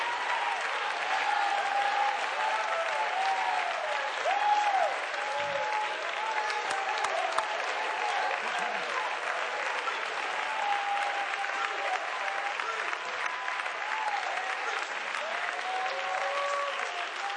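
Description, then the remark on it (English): A church audience claps steadily and loudly throughout a sermon, a dense unbroken wash of applause with excited voices cheering and whooping over it, never pausing. “Oh, come on, clap them with salt.”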